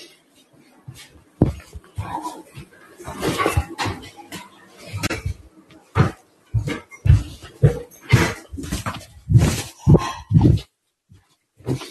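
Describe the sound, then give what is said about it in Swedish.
Puppies whimpering and yelping, a steady run of short, high cries and squeaks with brief pauses, some louder bursts standing out near the end. “Det är dina valpar.”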